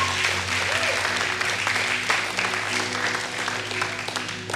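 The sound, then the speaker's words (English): An audience at a church service applauds steadily for several seconds for people who have just prayed to give their lives to Jesus, a dense wash of many hands clapping at an even, sustained loudness over a low hum, with no one speaking. “Can we give those people just a round of applause real quick?”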